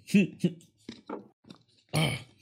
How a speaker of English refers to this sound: But, ooh, excuse me. Excuse me, that was a tiny burp.